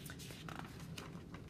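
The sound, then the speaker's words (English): A soft, papery rustle as a book page is turned, with a few brief crinkling swishes over about a second, fairly quiet, with no one speaking. “Oh my gosh, we're turning the page again.”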